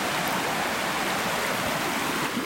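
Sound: flowing creek water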